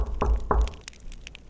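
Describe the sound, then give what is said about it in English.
Two firm knocks on a door by trick-or-treaters, evenly spaced about a third of a second apart, fairly loud with a dull wooden thud, followed by quiet. “They're knocking.”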